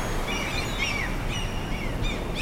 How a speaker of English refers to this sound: And now that we're here together at the beach, I'm glad that we can share something similar. Just taking in that sun, taking in the water, the sounds of the seagulls.